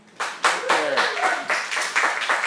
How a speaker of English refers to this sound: Feed me with your applause.